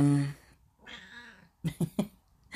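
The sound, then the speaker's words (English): A cat meows: a loud drawn-out meow, then a softer, wavering one, followed by three quick, short mews in a row. “My cat needs to talk to you too, apparently.”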